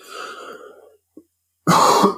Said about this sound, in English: It's the day after 420, so we're celebrating 420 because that's how stoners do it. And that's why I'm coughing.